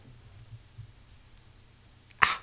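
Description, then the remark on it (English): After a couple of seconds of quiet, a voice imitates a paper cut with one quick, sharp, hissing swipe, fairly loud, ending almost as soon as it starts. “You want to hear my paper cut impression?”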